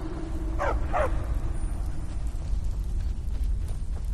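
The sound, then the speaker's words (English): Two quick, yelping dog barks close together near the start, from dogs in a video game hopping down through an open trap door, then nothing more from the dogs, all over a steady low rumbling background with no talking. “Looks like the dogs hopped down.”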